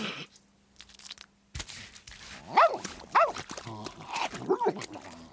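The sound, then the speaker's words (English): A dog chews noisily, with crunchy bites broken by a few short, high whimpers that rise and fall, three or four cries over a few seconds. “Good dog. That's a good Seymour.”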